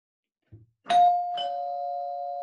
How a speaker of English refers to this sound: Oh, here is, let me see. I need to get the doorbell real quick.